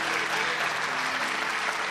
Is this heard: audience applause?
yes